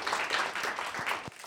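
Audience applause fills the moment, a dense steady patter of many hands clapping together at moderate volume, with no voices cutting through.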